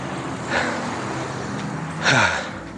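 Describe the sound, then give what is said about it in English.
A car passes by, its engine and tire noise swelling briefly and then falling away with a slight drop in pitch, against a steady background of outdoor road noise. “There's a car just coming past.”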